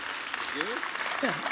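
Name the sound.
audience clapping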